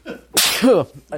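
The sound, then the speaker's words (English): A single loud sneeze: a sudden hissing burst of air that ends in a short voiced cry, with brief murmured vocal sounds just before and after. “I got a nice follow up that we can do sneezing.”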